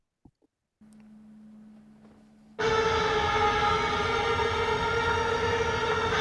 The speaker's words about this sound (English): Just some weird guitar noise, basically.